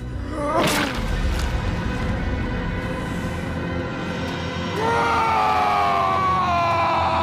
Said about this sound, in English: And so in a moment of like sadness, Big Daddy like squashes his buddy's head and then like screams a cry of agony.